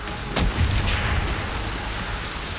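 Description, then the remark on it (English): A single warning shot from a U-boat's deck gun: a sharp, loud crack that drops into a low, booming rumble, which slowly fades over a steady background roar. No voices are heard. “Even so, he kept firing warning shots, but I still needed him a little closer.”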